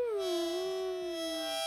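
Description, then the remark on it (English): A single sustained harmonica note, reedy and bright, dipping slightly in pitch at the start and then holding steady for under two seconds, played alone with no talking. “normally I play the music, but that was Athena with the harmonica”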